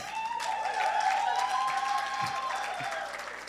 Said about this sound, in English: Why are you guys hating? Just clap.